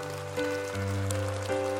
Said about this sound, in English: Why don't you lift your hands above your head and clap them above your head like this right here and say, wow.